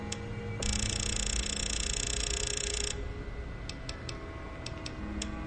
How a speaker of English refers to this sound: Sound of typing, so exciting. That's right. Thank you to the... Hope you podcast listeners love the typing part. Of course, we're actually just setting, like, variables here.